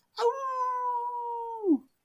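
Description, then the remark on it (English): A single loud, wolf-like howling scream rings out, holding one steady pitch for over a second before dropping away at the end, with no talking around it. “We looked at each other in shock, and then we heard a scream. Terrifying sound, like the howl of a wolf.”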